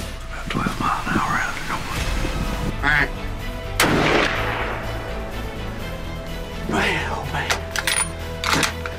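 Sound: hunting rifle gunshot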